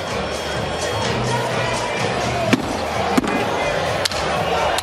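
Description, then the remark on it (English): Nick Kyrgios smashes his tennis racket against a hard court during a match, three sharp, loud thuds spaced about a second apart, heard over the steady murmur of a large crowd, before a game penalty to start the second set. “Those thuds you heard were Nick destroying his racket before copping a full game penalty to start the second set.”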